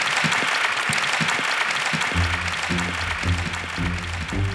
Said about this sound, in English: So a huge round of applause for our panel: Sir Richard Branson, Cassie Ho, Sean Rad, and Miguel McKelvey.